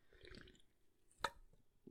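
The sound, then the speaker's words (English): A quiet sip from a can of White Claw hard seltzer: soft wet slurping and mouth sounds, then a single sharp gulp or click midway, followed by a faint swallow. No talking. “Oh, take another fucking sip of this White Claw.”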